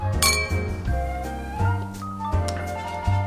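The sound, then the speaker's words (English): Glasses clink together in a toast with beer, a few bright chimes that ring and linger, repeating every second or so with no voices over them. “Cheers. Cheers, my buddy.”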